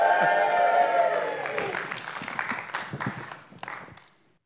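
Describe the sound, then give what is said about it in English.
A crowd in a staged production of the Esther story lets out a loud, sustained cheer for Mordecai that gives way to scattered, dense clapping, the applause gradually thinning and fading out after a few seconds. “The people, in their loudest voices, give a big cheer for Mordecai.”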